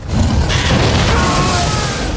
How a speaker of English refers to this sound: I don't think Randall and Dickon get bells. What do they get? I mean, a fire-breathing dragon sound? Dracarys.